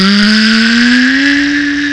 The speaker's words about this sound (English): Oh, that scared me. That's my vacuum noise.